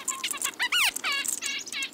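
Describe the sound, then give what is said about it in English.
Chickadees, kinglets, nuthatches and a downy woodpecker mob an owl, chirping in agitated bursts, rapid overlapping calls and buzzy trills crowding together, fairly loud, with no voices. “Chickadees, kinglets, nuthatches, and a downy woodpecker all join the fracas.”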